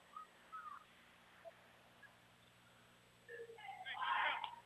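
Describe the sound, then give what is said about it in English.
A referee's whistle shrills near the end during a basketball game, rising out of a burst of crowd noise in a gym after a few quieter moments of scattered chatter and shoe squeaks. “We got a whistle.”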